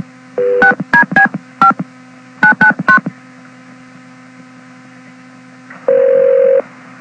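telephone keypad dialing tones

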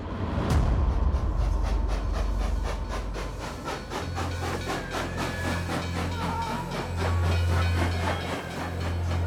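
train on rails

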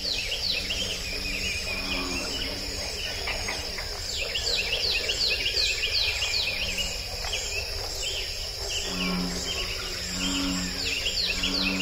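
bullfrogs

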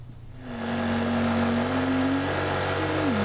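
scooter engine running

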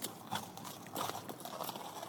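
horse hooves clip-clopping

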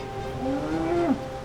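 cow mooing

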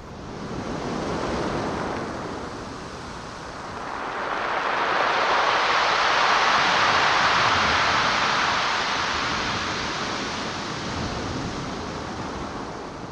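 ocean waves

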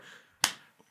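hand clap

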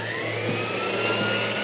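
vacuum cleaner running

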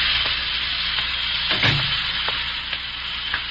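steam hissing

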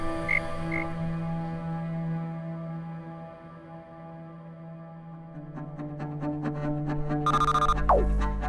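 frog croaking

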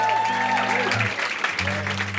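audience applause

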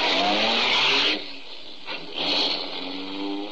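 car engine driving off

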